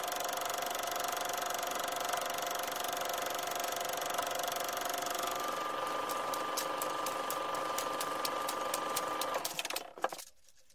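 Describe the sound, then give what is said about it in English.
A film projector whirs steadily with a mechanical hum and a rapid, even clatter, then winds down and stops near the end. No voices are heard. “Cue the film projector.”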